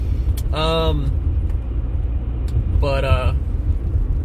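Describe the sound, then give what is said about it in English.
A steady, loud low rumble of a car's engine and road noise fills the cabin throughout, with only the driver inside, and two brief bursts of a voice rising above it. “Joking, I know I'm by myself in the car.”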